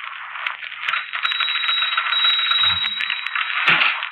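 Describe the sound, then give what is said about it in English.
A typewriter typing by itself, spelling out and underlining words: a steady run of rapid mechanical key clacks in quick succession, over a thick band of hiss, with a heavier thunk near the end. No one speaks. “That typewriter's haunted.”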